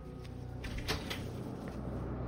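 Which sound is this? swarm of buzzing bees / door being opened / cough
door being opened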